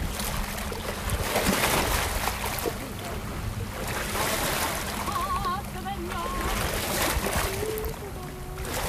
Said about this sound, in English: You're going to listen to ASMR beach waves splashing on rocks.